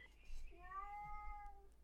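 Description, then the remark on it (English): A single drawn-out, high-pitched meow from a small cat, clear, rising then falling over about a second, with faint low background hum. “Small cat agrees. Yes. Small cat has thoughts.”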